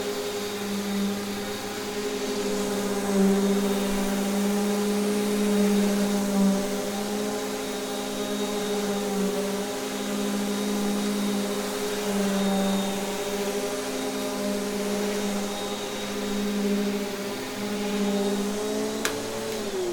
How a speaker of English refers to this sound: Okay, here's today's quiz, friends. What kind of vacuum cleaner is it?